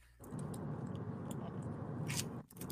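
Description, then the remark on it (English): Packing tape being pulled off a Fright Rags box holding The Last Drive-In merchandise, a steady crackly tearing noise lasting about two seconds with a few sharp high rasps, a brief pause, then the pulling starts again. “Tape is fighting me.”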